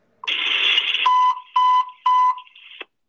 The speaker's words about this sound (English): So I'll play that 3-beep for these people and for the folks here for 1088 Nation so you can hear it.